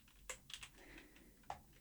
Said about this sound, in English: Just as soon as I get done typing it, you will see.